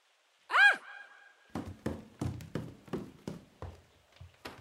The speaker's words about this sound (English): She knocked loudly on Paul's door, which was never locked.